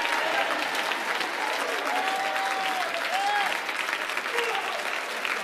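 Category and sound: crowd, audience clapping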